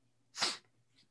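A single sharp sneeze bursts out, a quick explosive puff of breath that fades within a fraction of a second, followed by quiet.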